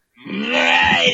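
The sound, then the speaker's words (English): A rough, guttural throat-clearing sound that swells after a brief silence and holds loud and raspy for about a second, with a low growling rumble underneath. “You're just clearing your throat.”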